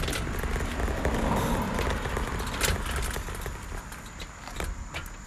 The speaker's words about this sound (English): Hang on, let for this car to pass by, and then maybe I'll be in a better situation.